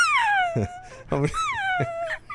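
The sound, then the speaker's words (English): A person imitates a seagull with two long, high, falling wails, each broken by short, lower, throaty yelps, like a gull's screech done by voice. “Dude, that's a seagull.”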